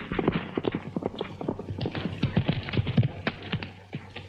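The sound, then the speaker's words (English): The hooves of the white horse White Cloud clip-clop steadily at a walking pace as it is ridden out of the woods. The sharp knocks are fairly loud over a low, constant background hum. “rides White Cloud, one of the horses stolen, out of the woods.”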